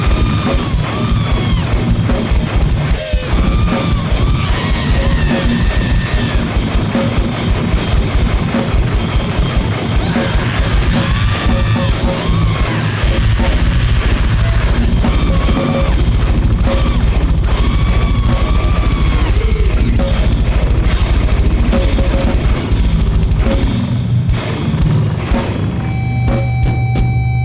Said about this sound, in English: The screams are just so fucking intense. I really feel like the noise rock thing, or the noise element is really bled into that car made of glass sound.